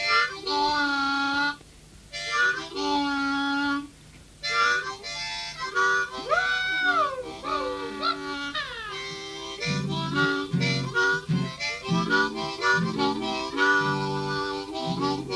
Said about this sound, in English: But, what did … teach you, man? …, he told me how to bend my harp just like this.